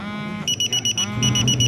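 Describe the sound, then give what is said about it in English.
A shrill electronic buzzer in a pub goes off to signal that lunch is ready, sounding in rapid repeated pulses, then settling into a steadier, continuous loud drone over a low background hum. “There goes the buzzer. That's our lunch.”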